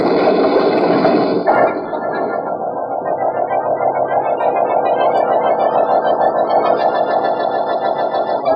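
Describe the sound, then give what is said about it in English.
As people get into the car, its starter cranks and the engine catches with a sudden jolt, then settles into a loud, steady, buzzing hum that rises slightly in pitch. No one speaks. “Vance and Malcolm are getting into his car. On with the starter now.”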